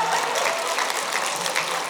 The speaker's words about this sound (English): Anyway, give her Abby a round of applause.